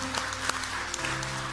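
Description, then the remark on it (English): An audience claps in praise of Jesus in steady, dense applause, a continuous crackle of many hands with a few sharper claps standing out over a low sustained hum. “Will you give Jesus one more hand clap and praise?”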